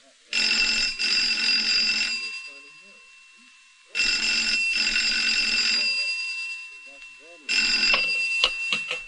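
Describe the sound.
A telephone rings loudly in three long bursts with pauses between them, its bright electric trill sounding close by, with a faint voice murmuring underneath during the rings.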